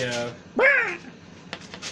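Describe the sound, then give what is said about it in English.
A voice lets out a single loud, harsh squawk imitating a parrot dragon, a short rising-then-falling screech, with brief bits of talking just before and after. “Oh, did I not mention he's a parrot? He's a parrot dragon.”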